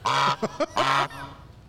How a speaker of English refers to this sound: Honk honk.